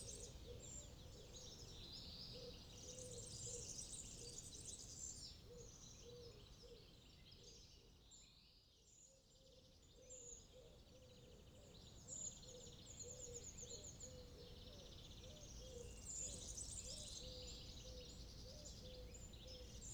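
pigeons calling

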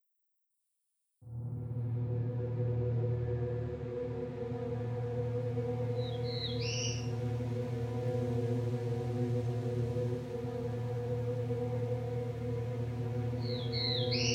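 black-throated blue warbler song

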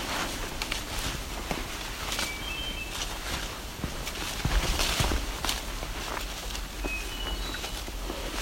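hermit thrush song

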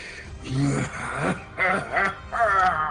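throat clearing

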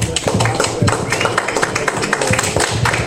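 audience applause

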